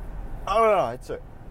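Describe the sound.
A short, throaty cough, a rough voiced hack followed by a couple of quick, breathy bursts against a quiet car-interior background.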